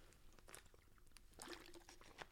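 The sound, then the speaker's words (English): A few quiet sips of water, with small wet slurps and soft clicks scattered over a couple of seconds and no one talking. “Hold on, I'm going to take a sip of water.”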